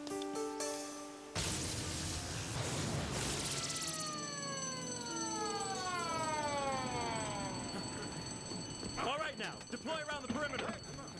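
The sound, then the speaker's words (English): A loud electronic alarm rings continuously with layered tones and sweeping, falling pitches, filling the whole stretch; near the end voices briefly break in over it. “These alarms aren't so false anymore.”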